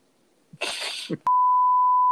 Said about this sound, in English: For the people at home, you just heard a bleep, but he just said Putang, and that was fucking stupid. I'm editing it out.